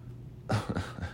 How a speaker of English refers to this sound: Here's that dog barking. There's food. There's food going on down there. It's so funny. That dog's so fat.